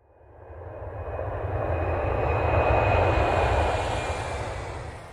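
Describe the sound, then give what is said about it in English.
A loud airplane engine roars steadily, swelling as it passes overhead with a thick low rumble and a thin high whine, then easing slightly at the end. No one speaks. “Our last sound goes with the word avión, or airplane.”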